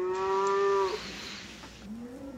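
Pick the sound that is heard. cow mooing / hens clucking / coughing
cow mooing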